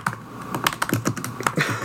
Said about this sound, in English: Here, let me get some typing sounds in on this podcast episode.